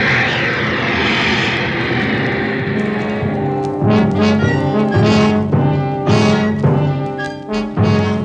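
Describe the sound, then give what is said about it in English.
Heavy ship's engine-room machinery runs loud, a steady droning hum with harmonic tones, joined midway by repeated surging bursts of hissing, clattering mechanical noise. “Now there's the lads that's got it tough. The ones down there in the engine room.”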